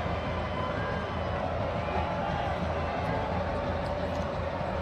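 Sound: football stadium crowd cheering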